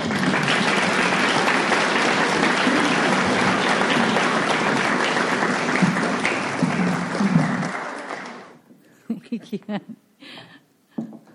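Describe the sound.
Loud, dense applause from an audience at a recovery meeting for alcoholics, for a speaker who has just finished his talk, steady clapping for about eight seconds before it abruptly stops, followed by faint talking.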